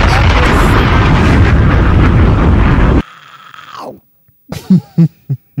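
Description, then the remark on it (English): A bomb explosion sound effect: a loud, roaring blast fills about three seconds with heavy rumbling noise, then cuts off abruptly into a falling whine and a few short, punchy bursts. “Drop a bomb in this.”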